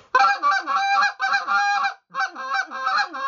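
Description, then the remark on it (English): A man's fast goose calling: a rapid run of loud honking notes, broken by one brief pause before the quick honks resume. No one speaks. “And he starts doing this fast stuff, and he's talking about it, and that's what he likes to do every time when he sees geese.”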